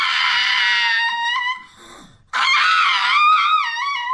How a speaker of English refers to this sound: is a pug, a dog. Oh. And she shrieks like a human instead of barking. And here she is. Wow. All she does is open her mouth when she wants attention, and that's the noise she makes. There it is.